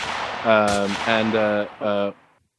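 A voice imitates gunfire with three loud, buzzing vocal bursts, the first punctuated by a sharp crack, then fades to silence.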